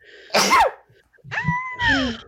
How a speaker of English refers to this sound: Hold on. I got to sneeze.